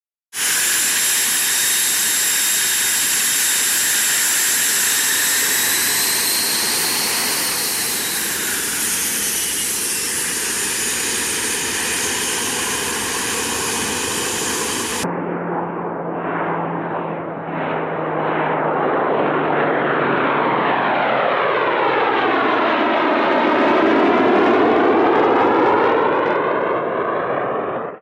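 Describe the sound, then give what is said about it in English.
A North American T-2A Buckeye jet trainer roars loudly with a high, steady turbine whine, then passes by, its tone sweeping down and back as it flies past. No one speaks. “I had never flown a jet airplane until I went to the T-2A Buckeye, North American T-2A Buckeye.”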